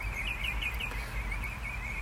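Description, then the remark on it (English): Birds sing outdoors in a steady, high-pitched warbling chorus that carries on without a break, fairly faint over a low background rumble. No one speaks. “God, listen to those birds. I am absolutely loving this.”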